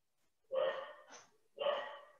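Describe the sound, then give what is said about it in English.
A pet dog barks twice in quick succession, two loud woofs with a short breathy huff between them and no talking, going nuts in the background. “My dog is going nuts in the background.”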